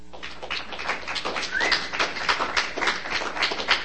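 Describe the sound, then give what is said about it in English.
A small audience claps steadily for a few seconds, a dense, even patter of many hands at moderate volume with no one speaking over it. “Do you do the clapping in between?”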